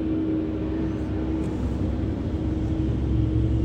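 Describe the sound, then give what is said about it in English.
A big Kenworth truck roars past on a road, its loud, deep engine rumble and droning hum filling the few seconds steadily with no voices. “oh, we're going to have a big truck go by here. It's going to be really loud for a second.”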